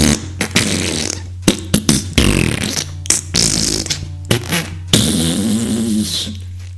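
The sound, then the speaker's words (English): A person mimics a fart with their mouth, producing a loud run of sputtering, buzzy raspberries in uneven bursts that stretch on for several seconds without any spoken words. “And he was just making this kind of fart noise.”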